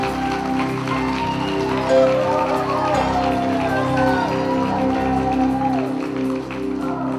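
Audience applause, a dense, steady wash of many hands clapping that holds at an even, fairly loud level throughout, with scattered cheering and whistling voices mixed in.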